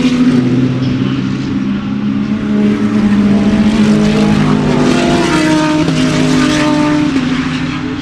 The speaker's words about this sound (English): There's another car coming. He's got it running. They got it running.